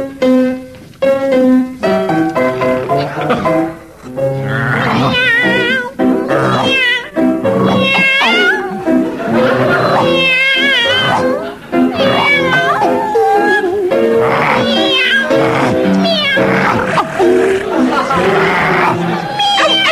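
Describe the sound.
Two voices sing a song as a dog and a cat, in mewing, meowing cat sounds and barking, yowling dog-like noises, loud, continuing nonstop with a crowd audible faintly beneath.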